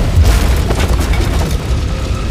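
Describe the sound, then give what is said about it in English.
A flaming beam crashes down inside the burning Wayne Manor during a sword fight, landing on Bruce, with a heavy, booming impact, followed by a deep, sustained rumble and scattered crackling debris for about two seconds, loud throughout with no voices. “Swords slashing, they made their way through the mansion until a flaming beam landed on Bruce, knocking him unconscious.”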